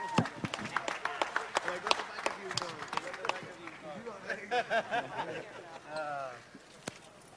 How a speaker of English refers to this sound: Big round of applause for two classy, classy gentlemen.